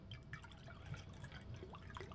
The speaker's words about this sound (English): Let's pour ourselves a couple fingers of this.